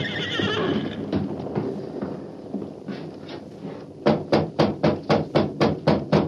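A horse named Silver lets out a high, wavering whinny, followed by a lull and then a steady run of loud hoofbeats clip-clopping in an even rhythm, about nine strikes in a row.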